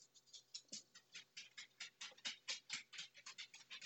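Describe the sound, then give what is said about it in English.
Dogs' claws tap across a hard floor in a quick, steady patter of light clicks, moderately loud, with no talking. “And that tapping is my dogs.”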